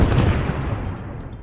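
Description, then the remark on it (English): A lit stick of dynamite explodes by a churchyard, a powerful blast that rocks the ground and shatters the windows of nearby parked cars, a dense roar of low booming and crackling debris that stays loud throughout and only begins to fade slightly; no voices. “The explosion rocked the ground and shattered the windows of the cars parked nearby.”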